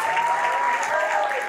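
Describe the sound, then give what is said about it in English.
A crowd applauds steadily for a man's wife as she is invited up to join him, a dense, even patter of many hands clapping at a constant level, with no voices breaking through. “Could y'all clap it up for my beautiful wife?”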